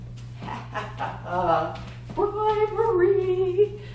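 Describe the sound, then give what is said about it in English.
A dog whimpers and whines in drawn-out, wavering high-pitched cries, with a few shorter yelping sounds earlier, over a steady low electrical hum. “I have to bribe a dog.”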